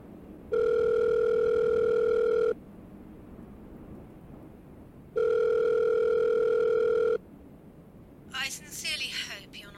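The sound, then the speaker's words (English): A telephone line tone sounds in two long, steady, buzzing bursts of about two seconds each with a pause between as someone makes a phone call, then a person starts talking at the end. “I need to make a phone call about this.”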